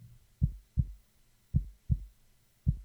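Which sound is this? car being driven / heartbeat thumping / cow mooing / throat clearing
heartbeat thumping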